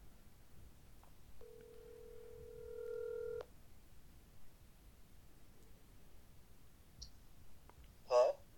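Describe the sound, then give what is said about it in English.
A phone call to a friend goes through: one steady ring tone lasts about two seconds, then after a quiet pause come a few soft clicks and a brief clatter, like the line being picked up. “she has decided to use one of her lifelines, phone a friend”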